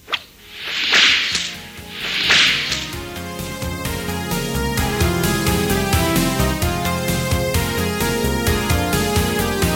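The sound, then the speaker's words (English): Two sharp, loud whip cracks with a swishing whoosh, about a second and a half apart, followed by steady instrumental music that carries on to the end. “You'll know it's time to turn the page when you hear the whip crack like this.”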